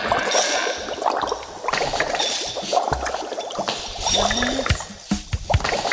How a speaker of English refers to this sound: You hear eerie sounds of bubbling potions as you are seemingly transported to that very night.